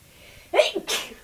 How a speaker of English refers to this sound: … has allergies, so she might sneeze.